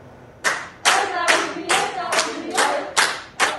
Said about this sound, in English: Medical staff at a hospital in Barcelona clapped and chanted on Friday as the first COVID-19 patient was transferred out of their intensive care unit and into a general ward.